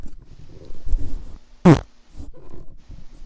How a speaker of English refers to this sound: That was a real fart. That was gross. That was gross.